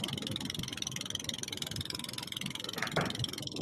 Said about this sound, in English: Okay, that must be Iwo Jima because the motor sounds like on the boat that they're watching this thing go off. Man, that thing's going ballistic, dude. Why does this boat motor sound like a lawnmower?